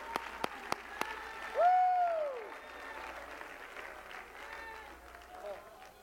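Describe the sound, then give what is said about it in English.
An audience claps to give praise to God, a few sharp separate claps at first, then blending into steady, moderate applause, with a voice letting out a long rising-and-falling cry and other voices murmuring underneath. “Somebody clap your hands and give him some praise.”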